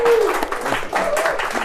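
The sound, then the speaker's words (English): A crowd applauds with steady, dense clapping that stays loud throughout, with a faint tonal whistle or cheer rising briefly above the noise. “So again, please clap for them.”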